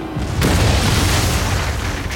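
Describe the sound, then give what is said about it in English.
A loud cannon blast from the Dutchman's broadside during a storm erupts into a sustained roaring rumble, like heavy gunfire mixed with the crash of the Vandermeer's wooden hull splitting down the middle, with no voices. “As the infernal cannons blazed, our hull split down the middle with a sound like thunder.”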